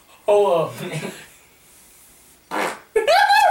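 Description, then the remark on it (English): Loud, drawn-out fart sounds come in two close bursts with a faint hissing stretch between them, nothing else heard. “And he just rips a good one.”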